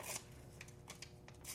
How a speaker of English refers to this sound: So here, I'm cutting the paper because I really don't want to waste these papers, but like you know, at the same time, it's too lazy to get a notebook out.